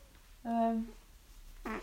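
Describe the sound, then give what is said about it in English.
A single buzzy fart lasting about half a second, with a steady low pitch and clear overtones, then a brief rougher burst of sound a moment later. “Is that a fart?”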